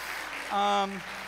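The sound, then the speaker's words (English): An audience claps in a steady, dense patter throughout, with a single sustained cheer or whoop rising out of the applause midway before fading back into the clapping. “I didn't expect them to clap for you.”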